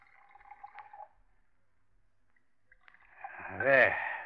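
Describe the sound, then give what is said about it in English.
Brandy is poured into two snifter glasses in two pours: a soft, short trickle first, then after a pause a louder gurgling pour whose tone rises as the glass fills. “Now, two glasses, please. Brandy snifters, of course. If anyone should see us, Mr. Brown, I'll pour, Elsie.”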